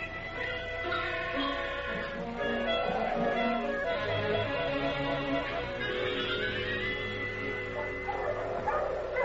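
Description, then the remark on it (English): A pack of sled dogs pulling a sled barks and yips continuously, overlapping excited, high-pitched calls and whines that stay fairly loud throughout, with no pauses. “I ain't pulling this thing. Talk to the dogs.”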